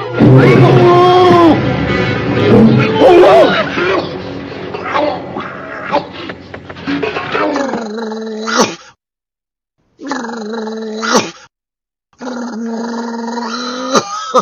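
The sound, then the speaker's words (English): Deep, snarling growls and roars from a tiger and a bear layer over each other loudly for several seconds, followed by three short, blaring tonal bursts separated by brief silences. “I am the tiger, the bear.”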